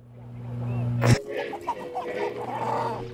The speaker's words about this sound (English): So there's chickens, apparently. But won't this sound weird, though, to people? Like, if they don't know what the hell is going on?